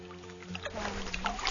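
The Rio Grande flows in a steady, hissing wash with brighter splashy surges, over a constant low droning hum, and no voices.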